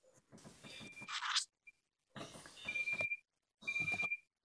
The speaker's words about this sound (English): The alarm's going off.